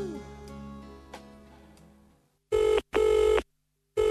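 A fading musical passage gives way to a loud telephone ring: two buzzing electronic bursts, then a pause before another ring begins right at the end.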